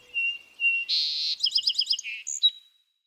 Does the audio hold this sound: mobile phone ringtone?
no